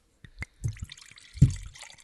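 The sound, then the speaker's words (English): Wine pours into a glass, starting with a few distinct drips and splashes, then a heavier gurgling flow with a bright ringing glassy edge. No one speaks. “Well, that sounded like a 16600 pour this morning. It sounded a little heavy.”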